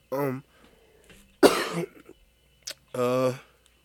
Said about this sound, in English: Yeah, they're saying the cough is like the N-word.